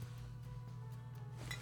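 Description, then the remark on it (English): A brief, bright clink of drinking glasses touching in a toast near the end, ringing faintly over a steady low hum. “Raise your glasses, boys, to Quinny's grand ideas and to us.”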